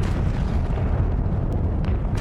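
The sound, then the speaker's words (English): A barrage of artillery shells exploding: a constant deep, heavy rumble with sharper blasts bursting through in the final second, loud throughout, with no voices. “and high-pitched screams, the sound of banshees all around me, as hell erupted in fire, brimstone, smoke, heat and light, as shell after shell landed.”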